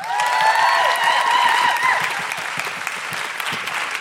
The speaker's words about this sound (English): And keep that applause going for one of my favourite acts at this Fringe, any Fringe, and in life. It's the incredible Jess Robinson!